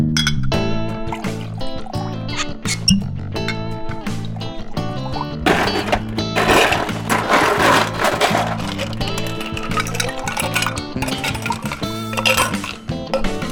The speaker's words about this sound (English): We take a break and make a cocktail?